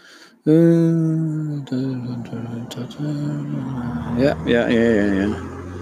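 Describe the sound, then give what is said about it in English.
A car with a big, thick, loud exhaust passes by, its deep, droning engine rumble swelling suddenly and holding strong, then revving higher toward the end. “Oh, there's a car coming.”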